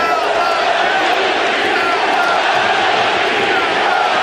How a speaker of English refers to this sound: We heard the crowd go silent and now getting very loud at the Coliseum.